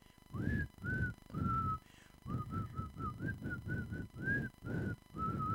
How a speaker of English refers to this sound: I'm gonna like superimpose me actually whistling over that so it sounds good.